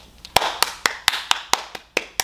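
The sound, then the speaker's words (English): A steady run of about nine sharp hand claps from a studio audience, evenly paced at roughly four per second, crisp and moderately loud with no talking over them. “Studio audience clapping if you haven't figured it out by now.”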